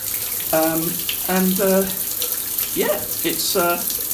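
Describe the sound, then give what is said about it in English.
Shower water runs in a steady hiss throughout, turning cold, with a man's voice speaking in short bursts over the spray as he talks from his shower. “So this is … broadcasting from his shower.”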